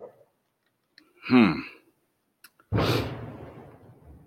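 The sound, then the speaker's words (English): A firework explodes outside, heard from inside a garage, with a sudden, loud bang that trails off into a rumbling, crackling decay lasting over a second. Before it comes a short throaty vocal noise and a faint click. “Damn, that was a firework.”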